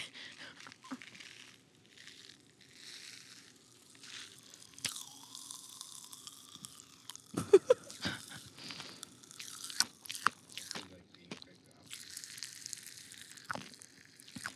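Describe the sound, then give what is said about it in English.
Pop Rocks candy from Underground Snacks crackles and fizzes in a mouth, a dense spray of tiny, bright pops like rain, with occasional louder snaps and wet chewing sounds, steady throughout. “It sounds like it's raining in my mouth.”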